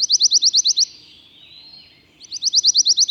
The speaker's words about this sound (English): This quirky warbler is also unique in its tendency to sing every month of the year. So, whether they only pass through your neck of the woods while migrating, or are year-round residents, you can enjoy the pine warbler's sweet little trills.